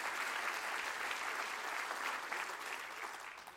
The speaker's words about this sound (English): Come on, praise Him right now and clap your hands.